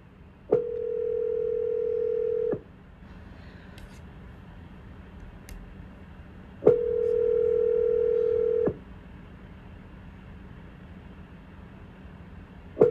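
A steady telephone tone sounds in two-second bursts separated by about four seconds of quiet, repeating like a line ringing out as someone places a call to call people back, clear and fairly loud over faint background hiss with no talking.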